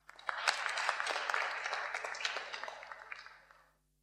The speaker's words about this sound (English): Give her a round of applause, folks.